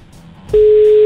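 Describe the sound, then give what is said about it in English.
A loud, steady telephone ringing tone of an outgoing call placed by High FM radio hosts to a listener cuts in halfway through and holds unbroken to the end, following a moment of quiet low background noise on the line. “Oh, good. It's ringing. That's a good sign.”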